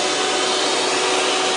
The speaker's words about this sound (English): Out comes the vacuum.